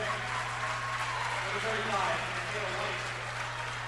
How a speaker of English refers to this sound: West essentially conceding here, trailing 61-46. And a nice round of applause for a lot of the North starters, certainly contributors here tonight.